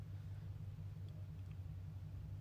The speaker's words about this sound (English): Super good timing, guys. There's someone backing their truck in a few spots down from me.